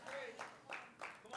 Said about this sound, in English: So six people clap. Thank you very much.